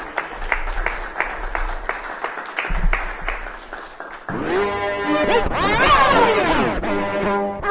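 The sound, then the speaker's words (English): Audience applause for a performer after his piece: steady, rhythmic clapping for a few seconds, then a louder, fuller burst joined by sweeping rising-and-falling tones that carry on to the end. “Give him a hand.”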